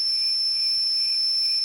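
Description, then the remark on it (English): A crickets sound effect: crickets chirp in a steady, high-pitched drone that runs unbroken for a couple of seconds, with faint pulsing in the trill and no voices. “love those crickets.”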